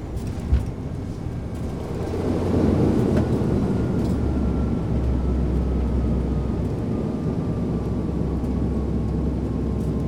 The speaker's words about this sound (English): Therefore, arrival, when the plane finally touches down.